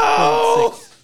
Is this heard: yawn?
yes